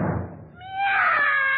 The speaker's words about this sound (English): Meow!